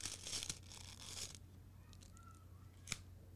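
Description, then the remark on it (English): A paper packet is torn open with a rough ripping sound, followed by quieter rustling and shuffling as the contents are sifted, ending with a sharp snap. Nobody speaks, and a low hum runs underneath. “How the fuck you open this thing? There you go, like, right there. Like, here you go, yeah. And you, like, sifting through the paper.”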